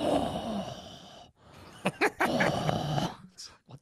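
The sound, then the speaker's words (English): Heavy, raspy, Darth Vader-like breathing right up against a microphone, loud, with a long drawn-out breath followed by several shorter, hissing inhales and exhales. “breathing Darth Vader into his microphone.”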